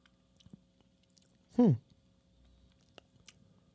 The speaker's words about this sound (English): So let me take a sip and let you know how I think of it. Okay.